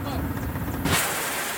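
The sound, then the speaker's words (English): A low, steady engine rumble gives way to a sudden loud blast of rockets firing from a helicopter swooping in low over the ground on a sortie, recorded on GoPro footage, followed by a sustained roaring hiss that fills the rest of the moment. “GoPro footage from the sortie shows the rockets firing as the copter swoops in low over the ground.”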